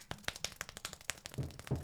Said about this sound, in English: I can clap really fast. You guys, how fast can you guys clap? Fast?